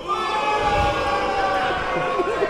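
An audience boos loudly and without a break, many voices blending into one dense, sustained jeer that holds steady for a couple of seconds, booing a person at the speaker's urging.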